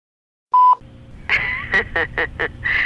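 Telephone dialing tones: a short electronic beep, then a quick run of about five bright, buzzy touch-tone pulses in an uneven rhythm, fairly loud over a low background hum.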